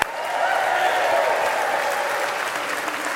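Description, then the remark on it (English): An audience gives a modest golf clap for the news that 17 kids gave their hearts to Jesus, clapping together in a steady, moderate round of applause that holds an even level for about three seconds, with no voices standing out. “I mean, I love you and all, and I don't want to be too critical, but that should give a little bit more than a golf clap.”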